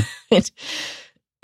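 cough

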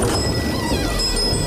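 thunderstorm with rain

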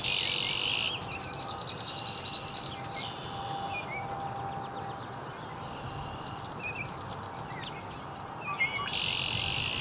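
song sparrow singing

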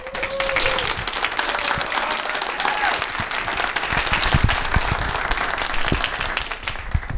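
applause

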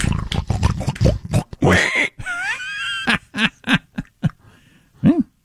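pigs squealing and grunting

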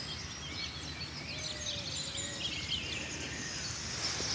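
birds calling

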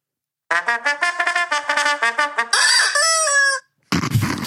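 rubber chicken toy squeaking

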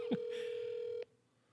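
phone dialing and ringing

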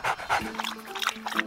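dog panting

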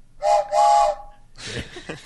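train whistle sound effect

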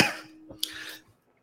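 coughing fit

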